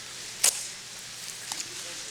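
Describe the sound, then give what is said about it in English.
Perforated paper torn off in one quick, bright rip, followed by a couple of faint, brief tearing sounds over a steady low hiss. No one speaks. “That is perforated. Let's all tear it off right now.”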